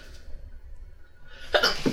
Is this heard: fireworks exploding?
no